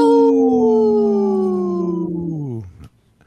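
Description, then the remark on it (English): A person imitates a wolf howl on Native Roots Radio, one long, loud voiced note that slowly slides downward in pitch for a few seconds before breaking off, with no other sounds around it; the howler has a cold after COVID. “We have my howl's a little weak here with my cold after COVID here.”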